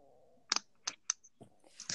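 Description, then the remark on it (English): Wet chewing of gum: a few sharp smacking clicks at an irregular, unhurried pace, then softer mouth noises. Quiet overall, with no talking. “I'm too busy eating gum and drinking water. Not eating gum! Chewing gum!”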